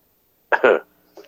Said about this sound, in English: That's rather unfortunate. You got that awkward cough. You got that awkward cough, man.